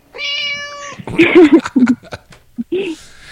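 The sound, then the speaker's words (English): A single drawn-out, clear cat meow, followed by people talking animatedly and briefly laughing. “He's a pimp cat.”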